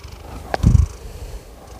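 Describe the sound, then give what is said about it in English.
A cat purrs in a short, low rumbling burst lasting well under a second, preceded by a faint click, with quiet background noise before and after and no talking. “Oh, kitty. You want to say hi?”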